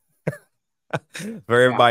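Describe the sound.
Two sharp coughs spaced apart, then a strained, raspy vocal sound that trails into a voice, like someone caught in a coughing fit and struggling to recover.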